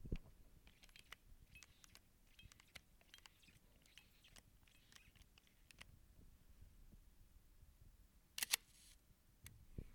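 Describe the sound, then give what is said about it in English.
Quiet mechanical ratcheting of the knurled winding knob of a Leica rangefinder camera, a run of small clicks over several seconds, followed by a sharp double-click of the shutter firing near the end. “All right, next up, we have the Leica. The Leica, you don't have to hit the nubbin or cock the shutter.”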